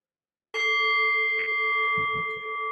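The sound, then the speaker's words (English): A single meditation bell is struck once, clear, then rings on with a steady, shimmering tone that sustains without fading. A few soft low thumps occur near the end. “Maybe I'll ring the bell.”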